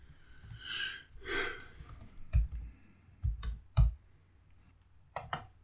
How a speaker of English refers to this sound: You type so loud. Sorry. Beating on the fucking keyboard.